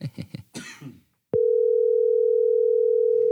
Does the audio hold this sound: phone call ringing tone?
yes